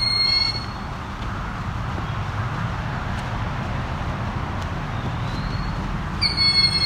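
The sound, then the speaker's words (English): A young Cooper's hawk, a very dark bird, gives shrill, piercing screams like an alarm going off, one at the start and another near the end, over a steady hiss of outdoor background noise. “This guy really does sound like an alarm got set off.”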